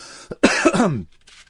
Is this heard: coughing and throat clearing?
yes